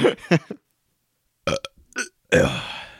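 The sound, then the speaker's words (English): A string of loud burps: a couple of quick croaky ones, a pause, then a few more and a long, drawn-out belch to finish. “Do you need to be burped?”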